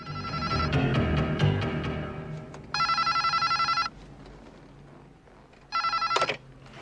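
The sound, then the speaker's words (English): An early 1980s Motorola DynaTAC 8000X brick cell phone rings in two bursts of rapid, trilling electronic tones, separated by a pause, with a low background rumble beneath the first part. “Gordon Gekko's huge Wall Street cell phone”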